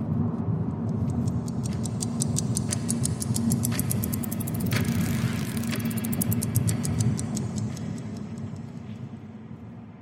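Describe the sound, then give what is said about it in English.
A self-driving car on autopilot rolls along at a safe, low speed, its steady low engine and road rumble filling the scene while a faint, regular ticking repeats throughout; no one speaks. “The car slows down to a safe speed and drives autonomously towards its destination.”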